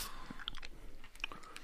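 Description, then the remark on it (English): Close, crisp crunching as hard sour sweets are bitten into pieces, a quick irregular series of sharp cracks and chews with no talking over it. “Yeah, I've crunched mine into pieces.”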